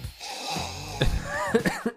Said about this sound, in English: Beginning, as always, with the sniff. Go ahead and pick up that glass of Trump Cabernet and sniff it as loudly as possible.